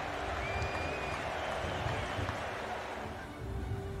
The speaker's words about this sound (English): The snitch gets released, and the crowd starts to swell.